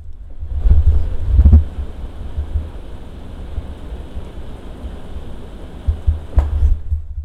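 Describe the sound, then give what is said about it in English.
Heavy rain pours down steadily in a dense, continuous hiss, with a deep rumbling undertone and a few louder thumps and gusts along the way; no one speaks. “The rain is absolutely coming down today.”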